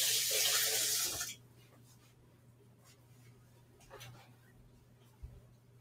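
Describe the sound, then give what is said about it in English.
A faucet gushes in a loud, steady hiss for just over a second as pancake batter is washed off hands, then shuts off abruptly, leaving a low hum, faint handling noises and a soft thump. “I need to wash my hands again.”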